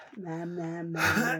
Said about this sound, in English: Because I've got the yawns now, obviously. Yeah, me too.